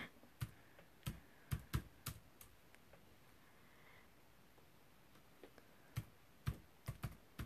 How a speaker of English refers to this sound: Let's see if he's gonna answer. He's typing.